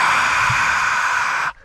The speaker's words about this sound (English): That's the crowd. Get it? Oh, cool. Yeah. Sounds like breathing.